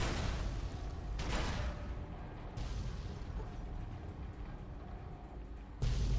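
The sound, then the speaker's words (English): Dense, continuous rumbling explosions from a video game, with several louder bursts standing out amid a constant barrage of booms and crackling debris. “Many, many, many explosions.”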